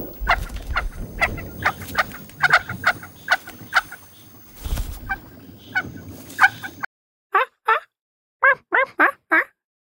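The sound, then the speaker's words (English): A small bird gives a rapid series of short, squeaky calls, first over a soft musical background, then alone in several quick bursts that sound fairly clear. “the only clip I have of like its little quiet call is from Planet Earth, so you'll hear like fun music in the background”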